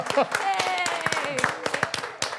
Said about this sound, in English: Hey, welcome to Parksionary, the game where we... You can clap, go ahead.